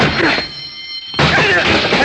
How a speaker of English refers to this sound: The door's locked. We got to break it down. Let's go, together.